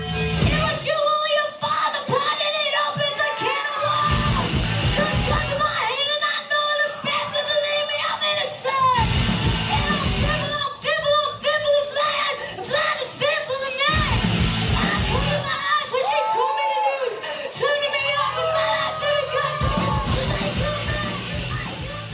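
A loud, raw punk rock song with a singer yelling and straining over distorted guitars and pounding drums, the band playing dense and steady for the whole stretch.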